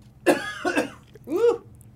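human body sound, coughing

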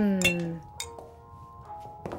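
household object, glasses clinking

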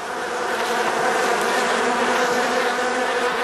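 insect, bees buzzing

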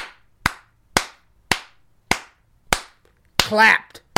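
sound effect, clapping sound effect

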